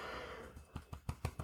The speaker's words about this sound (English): Excuse me. Yep, I yawned.